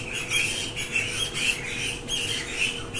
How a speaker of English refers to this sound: It's always a certain type of bird that comes. That's how I know springtime is coming here. The raucous birds arrive in the bamboo.